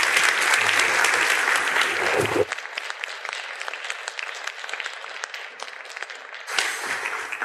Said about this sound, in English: And thank you so much. Give her a warm round of applause, folks.